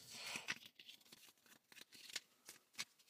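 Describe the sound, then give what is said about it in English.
A deck of tarot cards being shuffled, a rapid run of crisp, papery riffles and slaps in an uneven rhythm, fairly quiet with no talking. “So I'm going to start shuffling.”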